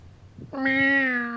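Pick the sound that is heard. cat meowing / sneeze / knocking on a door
cat meowing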